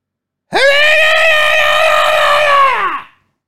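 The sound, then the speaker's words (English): A human voice imitates an animal's shrill scream: one loud, sustained, piercing cry lasting a few seconds at a steady pitch, then cutting off abruptly. “I hear this screaming, shrill cry of an animal.”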